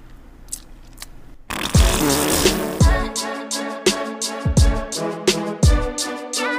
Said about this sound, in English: I'm right up on the mic, ASMR style, like you've wanted. Give me a big, juicy fart.